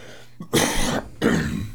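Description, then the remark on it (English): Two harsh coughs or throat clears from a person getting over allergies and a chest ailment, with a scratchy throat, each a short raspy burst, separated by a brief pause, with no talking. “So I apologize if I cough.”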